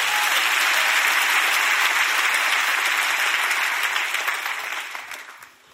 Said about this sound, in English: Clap your hands for the word of God.